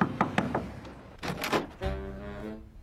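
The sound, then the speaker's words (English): A quick series of sharp knocks on a front door by a visitor, followed by a second burst of louder raps, then a sustained low, humming tone takes over. No one speaks. “But Liz has a visitor at her front door, an old Dick Lemon.”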